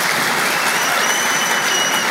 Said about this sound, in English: You know, babies always get applause at a Catholic university. You can count on it.